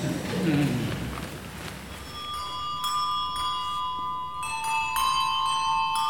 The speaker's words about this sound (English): More fame for our special Dewsbury bells.